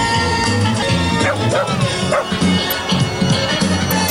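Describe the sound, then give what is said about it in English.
Several real dogs bark and yip in a steady, overlapping run of sharp calls, fairly loud, with a dense background din throughout. “You hear dogs barking, right?”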